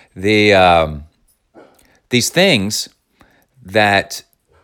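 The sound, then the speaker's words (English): A dog lets out three loud, drawn-out whining yowls with wavering pitch, separated by short pauses, more like whimpering cries than sharp barks. “Hey, get out of here. That's our non-Zen master dog.”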